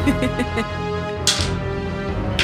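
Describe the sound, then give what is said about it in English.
Four dice, rolled for damage in a game, clatter across a table in a few quick bursts of sharp, rattling clicks, heard over a steady, humming tonal background. “That's a lot of dice. I just rolled max damage on the clock.”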